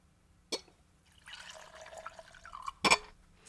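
A sharp click as the screw cap of a bottle of Nika Coffee 7 year Japanese whisky cracks open, then a steady gurgling pour into a glass for about a second and a half, ending with a louder clink. No talking.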